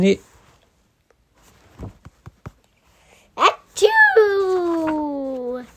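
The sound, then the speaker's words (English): A voice imitates a sneeze: a quick sharp intake, then a loud, drawn-out 'choo' that slides downward in pitch and trails off, preceded by a few faint clicks in near silence. “When I point to these, do you want to do the achoos? Achoo.”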